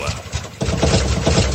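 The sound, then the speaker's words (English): A motor turns over and catches about halfway through, then settles into a loud, rumbling, throaty idle with slight revving pulses, with no talking. “Start your engines.”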